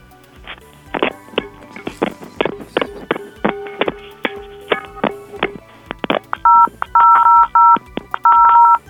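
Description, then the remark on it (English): A phone is banged repeatedly against a metal cooking pan, producing sharp, irregular clanks with a brief ringing tone, followed by several loud touch-tone keypad beeps near the end. “Yeah, but instead of two pans together, use one pan and the phone and bang those together.”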